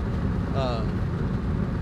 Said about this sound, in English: I basically describe to you what driving home for me is like, because you're listening to this podcast, I'm in the car, I'm telling you that I'm driving, but you never really get to, you don't know what it's like.